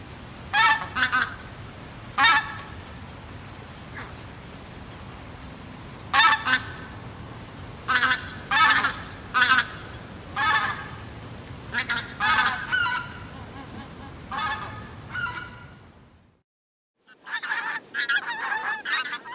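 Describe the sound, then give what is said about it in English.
Greater white-fronted geese give high, chattering, almost laughing calls in quick bursts, a flock calling loud over a low rumbling background, with a brief pause before the calls resume. “And when you get to the greater white-footed goose, as well as hearing how high frequency it is, listen to how sort of chattering it is, almost like a chuckling sound.”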